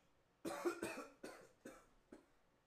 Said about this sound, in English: I got a cough.